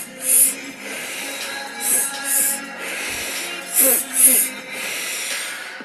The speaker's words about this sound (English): We're going to change the breathing just a little bit by doing two inhales in and a big sigh out. It's going to be all with your mouth. So we're going to go belly, chest out.